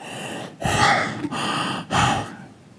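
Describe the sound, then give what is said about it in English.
A voice imitates the heavy, raspy breathing of an intruder who broke into a house: three loud breaths, each a long noisy rush of air separated by short pauses, with no words spoken. “And I'm playing this computer game, and I just hear this breathing.”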